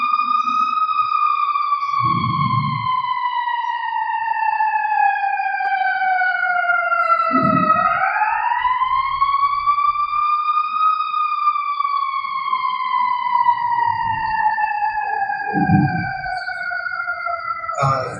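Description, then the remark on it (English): A loud emergency vehicle siren wails continuously outside, its pitch sliding slowly down, then rising and falling again over about eighteen seconds, with faint low thumps beneath and no talking. “I'm going to wait for the siren.”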